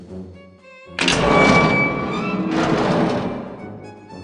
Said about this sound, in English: Derek loved being in his office and loved that he upset guests tremendously and gave him a psychological advantage, except, of course, when his mother threw the door open and strode in.